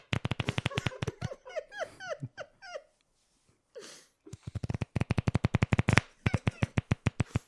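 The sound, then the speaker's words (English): Two bursts of playing cards being shuffled, each a rapid, even run of crisp flapping clicks, separated by a stretch of high, whiny, chirping squeaks and a brief quiet gap. “Are those actually cards? Because it sounds kind of like a fart.”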